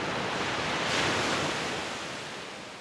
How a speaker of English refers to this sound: Your attention goes to how the water stretches out as far onto the beach as it can, before allowing the next set of waves to pull it back, to start the process all over again.